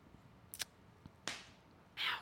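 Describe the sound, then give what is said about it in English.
A twisted sports bra strap snaps sharply against skin: a quick double snap, then a louder smacking crack, and finally a brief rougher burst of noise, with no talking. “Yeah, my bra strap, my sports bra was twisted, and then I just... I heard you just snap the shit out of yourself.”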